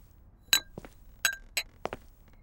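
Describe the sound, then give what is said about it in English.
Two glasses clink together in a toast: three bright, ringing chinks spaced unevenly, mixed with a few softer, duller knocks of glass being handled. No one speaks. “Pass me them two glasses, and we'll drink to it.”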